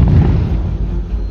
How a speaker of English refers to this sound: As the men set off at a jog, they heard a distant explosion. Clearly, the communications mast at Cyrene had been downed.